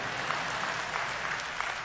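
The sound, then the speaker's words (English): An audience applauds with steady, dense clapping, many hands at once forming a continuous crackling patter at even loudness for about two seconds, with no voices over it. “I need, quickly, clap real quick.”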